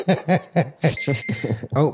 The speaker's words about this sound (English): there's our timer.